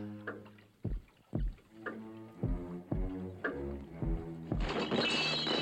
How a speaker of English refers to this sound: Oh, no, yes. Not the science stuff. The science stuff has to get smashed.